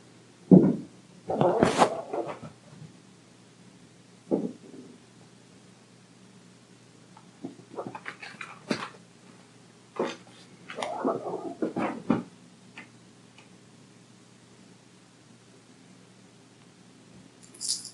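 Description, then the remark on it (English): A cat jumps onto and off furniture: soft, irregular thumps and scrabbling rustles arrive in short bursts separated by quiet pauses, all fairly faint, with no one talking. “She wasn't quite to the point of bouncing off walls yet, quite literally, but she was jumping off and onto pieces of furniture.”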